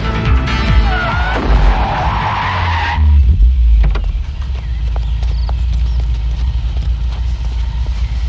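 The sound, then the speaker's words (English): Tires screech loudly for about three seconds as a car skids, ending in a sudden heavy thud as the car hits a woman, followed by a low, steady engine rumble. “Does she get hit by a car? Well, literally, the car hits her.”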